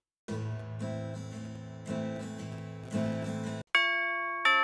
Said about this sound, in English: You hear that at the door? It sounds like a doorbell. I think it's the mailman.